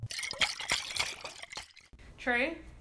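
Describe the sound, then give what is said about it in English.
Wine glugs and splashes into a glass for nearly two seconds, fairly loud, then a short rising tonal hum follows after a brief pause. “what made you pour your wine this week?”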